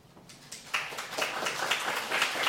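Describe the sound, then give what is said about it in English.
A steady patter of audience applause at a Festival of Urbanism session, building quickly after a quiet start and continuing as a dense wash of many hands clapping, with no one speaking. “And please stop the applause.”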